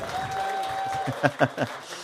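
An audience claps and cheers in a steady, dense wash of noise, with a sustained whistle early on and a few louder bursts of cheering toward the end.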